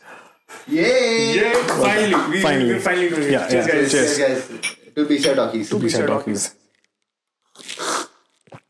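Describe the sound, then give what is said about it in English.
Glasses clink together in a toast amid lively overlapping voices and cheering, followed by a short burst of clattering tableware after a pause. “Cheers, guys. To BCR Talkies.”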